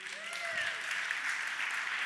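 An audience breaks into steady, dense applause, many hands clapping at once in a continuous wash of sound that holds evenly for a couple of seconds.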